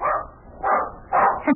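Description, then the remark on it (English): A dog barks several times in quick succession, three full barks followed by a short yip, loud, with no voices over it. “If Bunny comes in here barking, don't be afraid, because he won't bite you.”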